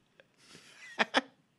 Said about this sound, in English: That sweet ASMR chewing sound.